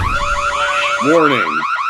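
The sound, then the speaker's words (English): A siren sound effect blares throughout, a fast high-pitched warbling yelp that repeats steadily, joined midway by a lower, slower wailing sweep that rises and falls before fading. “Hit the sirens.”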